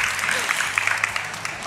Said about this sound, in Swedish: En stor applåd till Maja. Varmt välkommen.